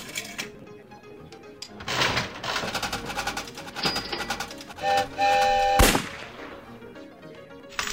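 Rapid clattering and clicking of a computer game slot machine paying out a $3 win in coins, with bright electronic chimes and jingles layered on top, loud and busy for several seconds before tapering off.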